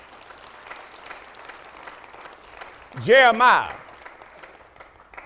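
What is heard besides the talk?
audience applause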